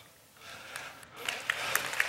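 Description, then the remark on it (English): Scattered applause from a church audience starts thin and grows as more hands join, a loose, uneven crowd clapping at moderate volume with a few sharp individual claps standing out. “See, that was an applause line and y'all totally missed it. You straggled in late like you're sleepy.”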